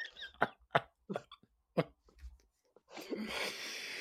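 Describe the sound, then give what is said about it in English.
A sneeze: a few short, sharp bursts of breathy noise, then a longer, loud, hissing blast of air at the end. No one speaks. “Bless you.”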